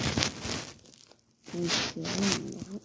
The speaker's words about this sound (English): All that chewing is the dog.